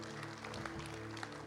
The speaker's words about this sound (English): So you just give him a round of applause, okay?